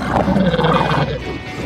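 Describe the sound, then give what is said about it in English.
A loud alien creature sound effect: a deep, warbling roar that growls steadily for over a second, then trails off with a rougher, fading rasp. No one speaks. “Or some aliens.”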